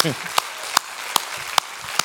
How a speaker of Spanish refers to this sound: ¿Tú crees que le puedes dar un aplauso al Señor? Amén.